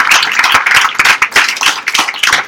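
An audience applauds all of the evening's winners, many hands clapping in a dense, bright patter that stays loud and even for a few seconds with no voices over it.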